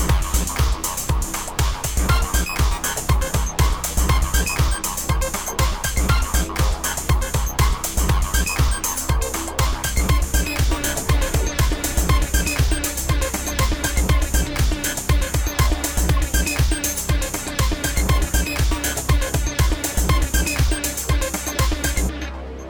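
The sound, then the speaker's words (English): Odin, a small Chinese crested dog, rumbles steadily while under the covers, a loud, continuous low purr with rapid rhythmic pulses that sounds much like an idling engine, with no one talking. “You're probably like, damn, that's a fine-tuned engine. Nope, that's Odin, the Chinese crested. And the sound he makes when he's under the covers.”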